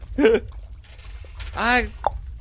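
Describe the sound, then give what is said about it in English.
Two gurgling, bubbly vocal glides imitate old potions glugging out of a bottle as they are emptied, fairly loud, then a short pop ends it. “You think he's just pouring out the old ones?”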